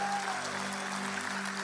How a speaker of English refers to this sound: True North family, come on, clap for everybody that said that. Come on, really celebrate with them.